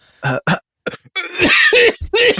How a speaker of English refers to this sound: Go ahead and cough for me now.